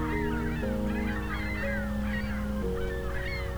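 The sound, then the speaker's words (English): A big flock of ring-billed gulls in flight, changing direction, calls continuously, many overlapping high squealing cries blending into a busy chorus over a steady low droning hum, with no one talking. “Ringbill gull calls.”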